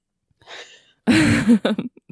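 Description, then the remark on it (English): A soft breathy exhale, then a loud, drawn-out burp with a low rumbling tone after drinking champagne, trailing into a few short gulping sounds. “Champagne makes me burp a ton.”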